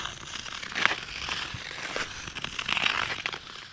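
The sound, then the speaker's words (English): Steady gritty scraping of ice skates gliding over a frozen canal skateway, with rhythmic crunchy strokes and bright hissing swishes rising and falling, no voices, moderately loud throughout. “Early in the morning when the sun comes up and there's hardly anybody on the canal and you can just hear your skates, it's about the only thing you can hear.”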